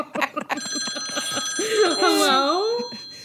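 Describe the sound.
A telephone rings with a steady, high electronic tone that persists through most of the moment, while a nearby voice speaks over it with an exaggerated, swooping pitch.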